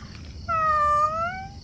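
A single drawn-out meow from Felix the cat, clear, sliding slightly in pitch over about a second, with a faint low background rumble and no talking.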